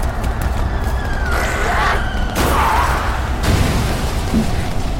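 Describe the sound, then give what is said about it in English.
A Jeep crashing into a house: a loud, continuous roar of engine rumble and splintering debris, with heavy bursts and booms breaking through every second or so and a thin whine running above. “That is, until a Jeep with four thrashers on it crashed into the home.”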